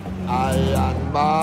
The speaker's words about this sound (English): This is the first time I've ever driven a car on a wrong side of the road. I mean, knowingly.